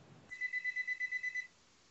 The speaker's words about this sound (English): Someone's phone's beeping.